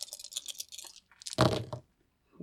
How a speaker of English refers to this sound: Three of the dice rolled in front of my laptop, and one rolled behind, and it was a one, a two, and a three in front.